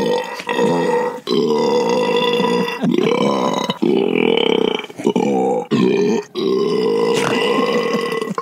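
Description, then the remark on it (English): A long, loud, drawn-out burp after drinking a 2-liter soda rumbles, broken into several throaty surges over about eight seconds, with no talking over it. “That was a big burp.”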